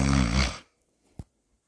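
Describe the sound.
A voice makes a single loud snoring imitation, a rough nasal rumble lasting about half a second, followed by silence and one small click.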